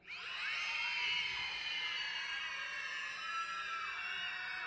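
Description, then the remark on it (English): A crowd of children in a church screams together on a count of three in one sustained, high-pitched burst that holds loud for several seconds, a dense mass of overlapping shrill voices with no speech. “On the count of three, scream.”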